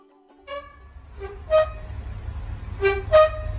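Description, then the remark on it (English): A squeaking oven door swings open and shut twice, each movement a pair of shrill, gliding hinge squeals, heard alone over a low steady rumble. “So she's opening up and closing her squeaking oven door.”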